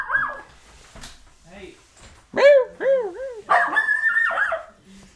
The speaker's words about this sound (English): That's so high pitch of a bark.